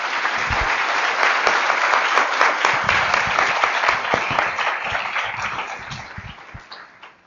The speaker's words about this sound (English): So welcome, everybody. And let's give them another round of applause for the...